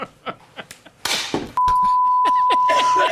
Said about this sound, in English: Crazy sound coming in my ear, this stupid hammering.